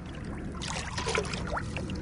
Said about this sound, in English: We've all got some nets and we're fishing throughout the water trying to see what we can get out.